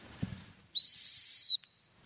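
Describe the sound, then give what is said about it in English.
A single sharp, high-pitched blast on a dog-training stop whistle, blown to stop a dog before a jump, lasting under a second and loud, preceded by a faint low thump and followed by silence. “And that's the stop whistle.”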